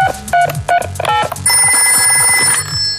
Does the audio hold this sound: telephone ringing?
yes